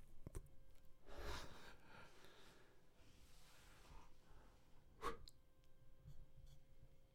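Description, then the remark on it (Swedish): A person who meant to burp yawns instead: a drawn-out yawn with a long breathy inhale and exhale, followed by a short sharp breathy burst and soft rustling, with no talking. “Jag skulle rapa, men så gäspar jag istället.”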